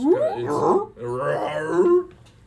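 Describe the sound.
A person vocally imitates an owlbear's roar, a monstrous cry that is half bear growl and half owl hoot, two drawn-out, wavering cries delivered loud over a low hum.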